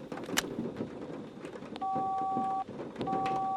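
Two sustained cell phone keypad tones sound in succession, clear, over a steady low rumble of background noise with a few faint clicks; no one speaks.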